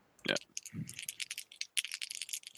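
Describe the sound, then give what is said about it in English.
Dice rattle and clatter across a hard surface in a quick burst of sharp clicks and taps, with a brief shaking rumble at the start and no talking, as dice are rolled for a skill roll in a tabletop role-playing game. “So let me roll my dice.”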